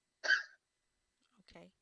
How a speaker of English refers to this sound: Hold on just a second, I got a cough.